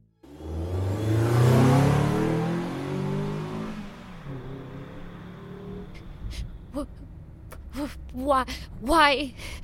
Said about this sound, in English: Her watcher grinds the car into gear and propels it forward, embracing the moment.